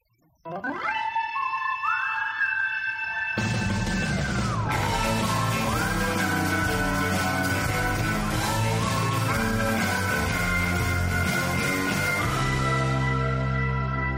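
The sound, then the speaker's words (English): An old funky theme music recording plays loudly, opening with a sliding, wavering lead melody before a full band kicks in with a dense, steady groove that carries through to the end. “That's some old funky music.”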